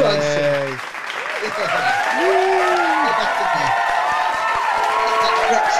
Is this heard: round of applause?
yes